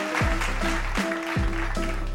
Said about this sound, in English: Hit the applause, Myla. We just about got there. Oh, it's a lame applause. It's deserved.